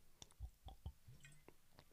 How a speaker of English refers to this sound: Sip water. Water sipping.